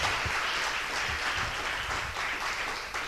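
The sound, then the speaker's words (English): Steady applause from a live audience for the show's host, a dense wash of many hands clapping at once, sustained and fairly loud for a few seconds with no voices on top. “One more time for your host, Brendan Kennedy. Let him hear it, y'all.”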